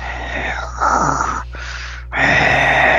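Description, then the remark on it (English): A voice imitates heavy, raspy mechanical breathing in the style of Darth Vader: a long hissing inhale, a brief pause, then another harsh breath, loud, with no words spoken. “And don't you just feel like you can hear, like, the Darth Vader, like...”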